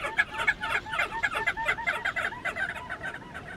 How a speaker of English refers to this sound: Picture a flock of tens of thousands of crested auklets flying low across the wave tops, yipping like an army of chihuahuas while trailing a perfume of fresh citrus.